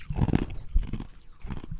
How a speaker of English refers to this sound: Yeah, well, no, I mean, well, not just like the chewing ice thing, which is very bad for your teeth.